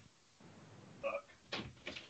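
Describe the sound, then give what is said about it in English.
A door creaks briefly and is then pushed shut, landing with two fairly loud knocks against a quiet background. “I told you to shut that f***ing door.”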